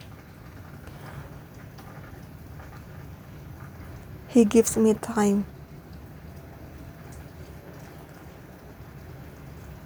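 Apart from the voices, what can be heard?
rain falling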